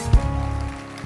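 A church audience claps their hands for Jesus in a dense, steady patter like rainfall, with one heavier thump near the start. No voices are heard.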